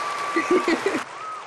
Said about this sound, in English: This is true. Applause for old age.